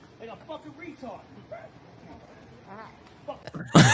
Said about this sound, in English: And someone farted. I went back to that and I lost it, dude.